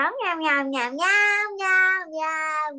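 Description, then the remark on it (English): A child's high voice imitates a cat, making a string of drawn-out, wavering meows in close succession, loud, with no other sounds around it. “Oh, we're talking cat language.”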